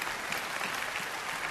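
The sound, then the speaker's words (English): An audience at a pastor's sermon applauds steadily on cue for a tightrope walker in the story, a dense wash of many hands clapping at an even, fairly loud level throughout, with no voices standing out. “Come on, let's clap for the guy.”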